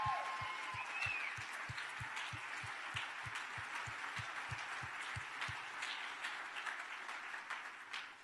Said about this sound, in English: Yeah, give her a big hand,